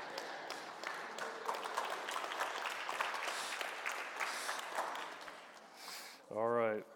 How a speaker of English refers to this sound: What we want you high school grads now to do is turn around and clap to your parents. They're the ones that got you here. There you go.